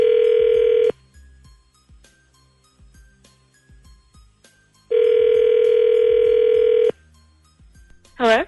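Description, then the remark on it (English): A phone call from the Z Morning Zoo radio show on Z104 rings out: two long, steady, buzzing ringback tones separated by several seconds of near silence, then a brief voice picks up right at the end. “We'll call her and we'll find out the truth when we come back.”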